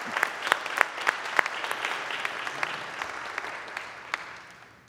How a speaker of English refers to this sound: Let's give a round of applause to these two. Yes.